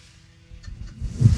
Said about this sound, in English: That's a Nissan Altima! Why is it that these little cars are the loudest cars of all time? And it's not like it's a race car.